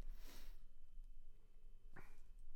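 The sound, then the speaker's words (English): A person clears their throat: a raspy, breathy rasp followed a moment later by a short, sharp second clearing, fairly quiet, with no talking around it. “I'll, yeah, clear my throat.”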